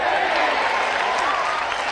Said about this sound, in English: Yeah, it's about time. We've got a golf clap.